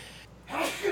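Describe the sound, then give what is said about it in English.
A single sneeze bursts out after a brief quiet moment, a sharp breathy blast that is fairly loud, with no talking around it. “Gesundheit.”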